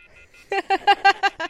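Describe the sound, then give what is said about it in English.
A few faint, high electronic beeps, then a quick run of six or so loud, buzzy phone tones pulsing in a steady rhythm as a phone call is hung up. “That's what she used to hang up on her clients.”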